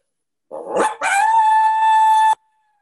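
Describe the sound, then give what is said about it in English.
A single female lone howl blown on an MFK two-reed diaphragm predator call opens with a rough, wavering rise, then settles into a long, steady high-pitched tone that cuts off abruptly. It's loud, with no talking. “That would just be what I consider more of like a female lone howl”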